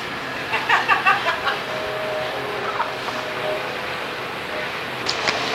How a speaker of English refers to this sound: However, I've got to tell you about something else first, just after I've had a drink and the train goes by.